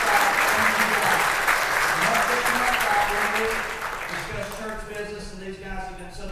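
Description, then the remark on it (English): A church audience applauds steadily for several seconds for four members who served on the pastor's council, dense clapping that thins slightly toward the end as a voice begins speaking over the fading applause. “And so I want you to give them a big round of applause for their service.”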